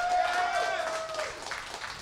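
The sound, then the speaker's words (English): An audience claps steadily for about two seconds, a dense, even wash of many hands, with a sustained high whoop or whistle riding over it early on. “Clap if you think it was amazing.”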